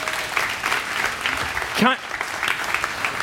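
A large group applauds steadily, a dense patter of clapping filling the space, with a brief vocal whoop or cheer rising out of it midway.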